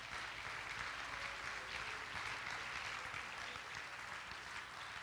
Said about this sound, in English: Oh, clap your hands unto the Lord.